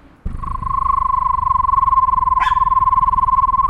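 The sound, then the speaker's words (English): A person imitates a screech owl's call: a steady, mid-high whistled trill that pulses rapidly on one unchanging pitch for about three seconds, with a brief sharp noise near the end. “What does the screech of a screech owl sound like? Can you describe it? They don't really screech.”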